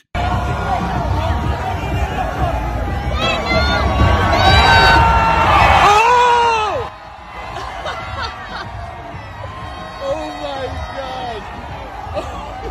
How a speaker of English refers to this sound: if you play the audio in that, listen, you can hear his kid yelling at him not to do it.